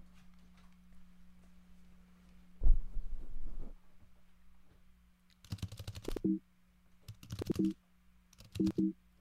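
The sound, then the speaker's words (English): Someone imitates keyboard typing with their mouth, making a few short bursts of clicky clattering noise in separate clusters over a low steady hum. “Pretty good typing sounds.”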